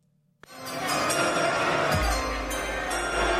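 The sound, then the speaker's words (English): After a brief near-silence, a recorded Christmas song bursts in loudly and fills the space, full and dense, with a deep bass line joining partway through and carrying on to the end. “if I let this go, it's going to go. It's Carol of the Bells.”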